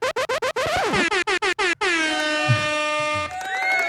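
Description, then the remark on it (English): A loud air horn sound effect blares in a rapid burst of short stuttering blasts, then holds a long sustained wail before a final blast, with no voices. “I like that the record scratch, then the air horns.”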